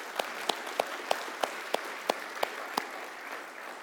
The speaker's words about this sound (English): And of all, I think He's the one that deserves our round of applause, if you will. Thank you, Lord.